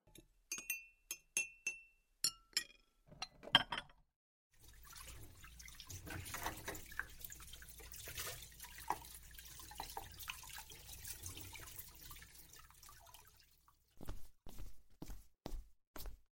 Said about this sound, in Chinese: 我来收拾碗筷，然后啊，再给你洗点水果。